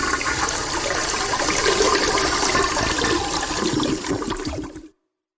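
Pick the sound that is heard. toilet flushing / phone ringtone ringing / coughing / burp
toilet flushing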